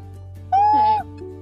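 person screaming

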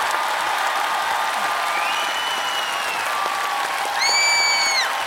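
clapping

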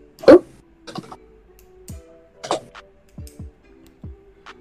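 typing on a keyboard

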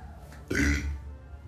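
burp

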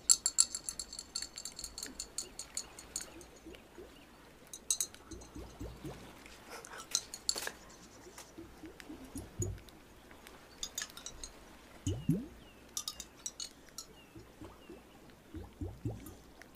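water sloshing

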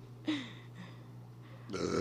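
burp into the microphone

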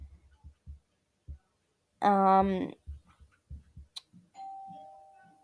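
doorbell ringing

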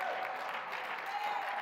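audience clapping hands

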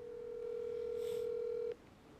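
phone dialing tones

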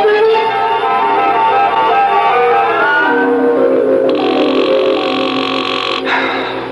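telephone ringing unanswered

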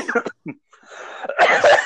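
coughing

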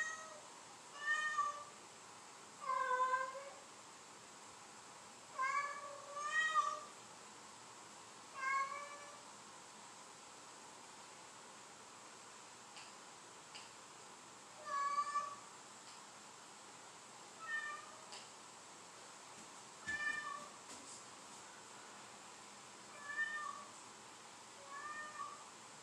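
cat meowing

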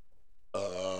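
burping

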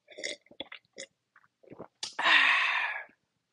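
sipping wine

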